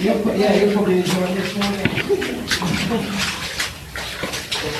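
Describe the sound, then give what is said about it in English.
Splashing and sloshing water from someone wearing a helmet stepping sideways through deep water in a dark, narrow tunnel, with irregular watery surges echoing, mixed with low murmured voices underneath. “Okay, stepping sideways through the tunnel. Water's quite deep.”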